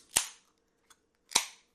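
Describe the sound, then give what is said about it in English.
Two cans of Stone's Arrogant Bastard beer crack open about a second apart, each a sharp pop followed by a brief fizzing hiss, with a tiny faint click in between and no talking. “And so we are going to enjoy Stone's Arrogant Bastard. From a can.”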